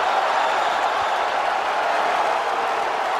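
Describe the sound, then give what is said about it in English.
A big arena crowd roars and cheers as Brock Lesnar is called in and walks in, a dense, continuous wash of noise, loud and steady throughout with no pauses or distinct voices standing out. “Now listen to this crowd.”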